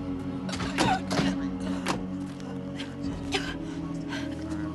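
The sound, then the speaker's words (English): A voice imitates a woman's strained, choking gasps, several short breathy bursts in a row, as she crawls away from a killer trying to say help but can't get the words out. Moderately loud. “And she kind of like has that gasping, like trying to say help, and she can't get the words out.”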